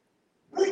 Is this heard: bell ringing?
no